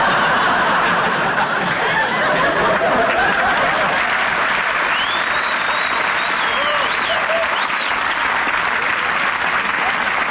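Sustained applause from an audience, a dense steady wash of clapping that fills the whole ten seconds, with scattered laughter and a few whoops rising over it.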